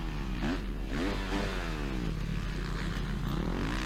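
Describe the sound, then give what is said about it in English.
A motocross bike engine revs hard as the rider goes into a right-hand berm turn, its buzzing pitch climbing and dropping in a couple of quick surges before settling into a lower, rough drone. Loud and continuous, with no voices. “There's one berm that he goes into this right-hander, and you can hear the bike.”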